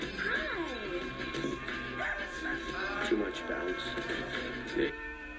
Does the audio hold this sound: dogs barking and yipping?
yes